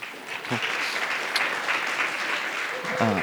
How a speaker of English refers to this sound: Thank you. They all did a really good job, I feel like. That's our staff, so clap again.